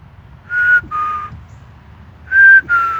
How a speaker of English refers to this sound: Oh, the whistle is only, once again, to see if the bars are rising on this sound recorder, which is basically just a basic free download from, I don't know what it's called.